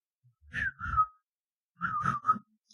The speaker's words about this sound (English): Yeah, hang on. I'm trying to whistle. My lips are dry.